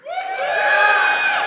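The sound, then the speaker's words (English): A church audience cheers loudly to choose between ice cream and a few dollars, many voices shouting and whooping together in a sustained, high-pitched burst that swells quickly and holds steady for about a second and a half. “You get to choose and cheer for ice cream or for a few dollars, okay?”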